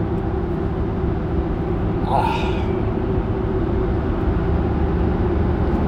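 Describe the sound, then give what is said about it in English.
A steady, loud low-frequency rumble of road noise inside a car driving a back route in rural Maine, with a brief spoken exclamation near the middle. “I've been in the car for a half hour to go 7 miles in rural Maine.”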